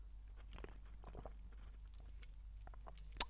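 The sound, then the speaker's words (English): Mouth sounds of someone sipping and gulping from a 500 ml drink, with soft wet swallows and small clicks, then a sharper smack near the end. No one speaks. “I'm not even going to pause it between those sips.”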